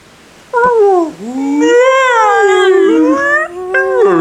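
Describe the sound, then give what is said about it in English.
Loud whale calls: long moaning tones that swoop down and then rise and waver over several seconds, with a brief sharp squeal near the end and no talking. “Oh no, the whales! The whales want to vote.”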